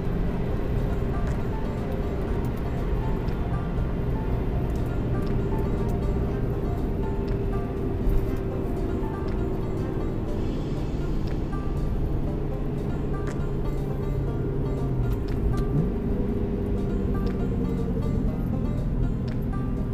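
A car engine drones steadily from inside the cabin, its pitch shifting as the revs blip and settle during a rev-matched downshift near the end, with no talking.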